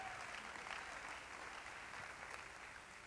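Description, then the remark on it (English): An audience claps their hands to praise God in a dense, steady wash of applause that holds at an even level throughout, with no voices standing out. “Oh, clap your hands to the Lord and give God praise.”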